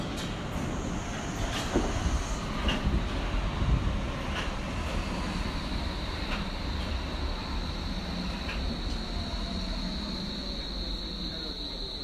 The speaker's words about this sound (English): I'm in Berlin, and I'm just about to get on a metro towards Kreuzberg, where I will meet up with today's guest,